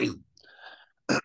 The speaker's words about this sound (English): Sorry, I'm just clearing my throat.